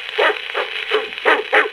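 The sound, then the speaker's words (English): A hunter's eight fierce hounds bark in a quick, uneven series of sharp, mid-pitched yelps, about five or six barks overlapping at a fairly loud level, with no talking. “Just then a hunter came along with 8 fierce hounds.”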